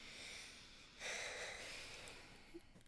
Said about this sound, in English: Take a deep breath. Everyone, listener, deep breathing. 1, 2, 3.